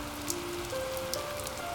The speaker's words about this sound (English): It's also starting to rain.